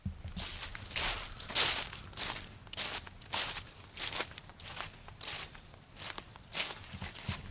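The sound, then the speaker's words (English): Footsteps crunch steadily through dry fallen leaves, each step a bright, crackly rustle in an even walking rhythm, with no one speaking. “So what I love is walking through the crunchy leaves.”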